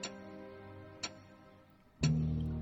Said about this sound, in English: Oh, it's a spooky clock.